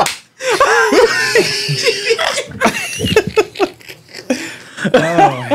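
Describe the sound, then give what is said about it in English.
Several sharp, loud hand slaps, like a slap on the buttocks, crack out in an uneven series, mixed with bursts of laughter and excited vocal noises between the smacks. “she slap you on the ass. That's what it is. And it sound like that.”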